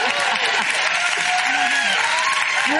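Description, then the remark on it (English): Steady, dense applause from a large audience, loud and continuous throughout, with faint voices and cheers mixed into the clapping. “Another applause line.”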